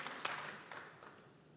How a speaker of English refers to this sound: That's where you still keep clapping.